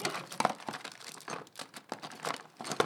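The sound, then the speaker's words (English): Pre-cut paper flower petals crinkle and rustle in quick, irregular bursts as they are pulled out and handled, with soft crackles and brief crisp peaks and no voices. “Rodriguez pulls out the paper flower petals she pre-cut at home”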